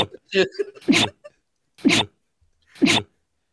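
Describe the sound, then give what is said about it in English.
Three loud, sharp sneezes burst out, evenly spaced about a second apart, each a quick explosive blast, preceded by a short run of voiced, breathy sounds. “That was like a sneeze call.”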